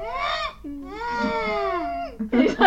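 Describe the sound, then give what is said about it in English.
A voice imitates the whistling nose breath of a man wearing a microphone and breathing out through his nose: two long, wavering, whiny tones with a slow pitch glide, followed by a short, rough, breathy burst at the end. “And so he's breathing out of his nose and it's like this little whistle, like...”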